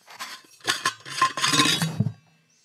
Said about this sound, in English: Now it's a water bottle in a cup. Hold on, there's something more. There's something more to this. A lid.